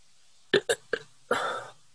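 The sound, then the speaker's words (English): Three quick throaty hiccup-like gulps, then a short, small burp forced on command, lasting under half a second, with no talking. “can you force yourself to burp like real small on command?”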